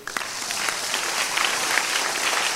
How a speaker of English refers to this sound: So, they are not clapping well.